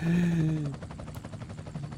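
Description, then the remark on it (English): A helicopter sound effect: a loud droning engine tone sinks slightly in pitch and fades, giving way to a rapid, steady thudding of rotor blades chopping the air. “Jim senior helicopter thing. The old man was up. The old man helicopter.”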